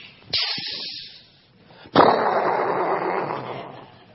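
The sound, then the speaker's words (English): Fireworks go off in two sharp bursts, the second followed by a long stretch of loud crackling and rumbling that slowly fades. No one speaks. “Yeah, next time you hear the fireworks, the 4th of July, just think about Jesus being raised from the dead.”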